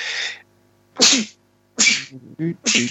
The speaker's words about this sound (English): I got to sneeze again. Sorry.